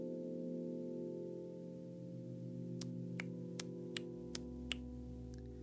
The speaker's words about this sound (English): That was my clock. Tick tock, tick tock.